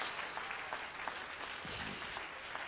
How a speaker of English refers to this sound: Somebody clap your hands with me and praise the Lord.